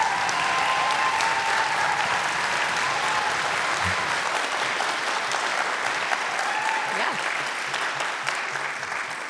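An audience claps steadily for the full length, a dense, even wash of many hands with no clear pauses, holding at a fairly constant loudness before easing slightly at the end.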